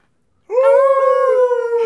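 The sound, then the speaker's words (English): After a brief silence, a person lets out a single long, loud, wolf-like howl, holding a steady tone for over a second with a slight rise and wavering toward the end. “I love Dead Air Wolf.”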